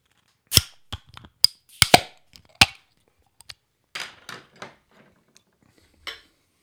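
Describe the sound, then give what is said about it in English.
A bottle of Boulevard blended bourbon-barrel-aged beer (12.28% ABV) being popped open, with a quick run of sharp metallic clicks and clinks from the opener and cap, then a few softer rattles and taps. “We have that blend, that concoction here in this bottle in front of us. Let's go ahead and pop this motherfucker.”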